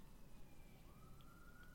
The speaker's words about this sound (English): It's funny because I like the sirens for a show that's set in New York.